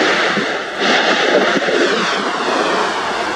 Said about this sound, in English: The eruption is sending rocks flying through the air and causing lava to flow down its slopes. That's from a series of explosions that have taken place in different craters in the volcano over the past 2 days.